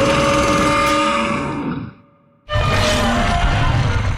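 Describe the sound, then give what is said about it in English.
A loud, harsh synthetic dinosaur roar made with bending metal, with a ringing metallic edge, sounds for about two seconds and fades, then after a brief silence a second equally powerful roar bursts in. “There's also bending metal in there to incorporate the mechanical aspect of it, but it still had to be a roar like a dinosaur.”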